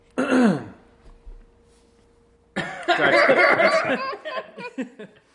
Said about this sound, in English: That's a thick eggnog. Yeah. That's an eggnog cough. That's an eggnog cough.